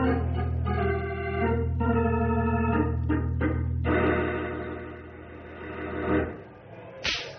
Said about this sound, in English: It's an ornery-looking whip. I hope Sultan respects it.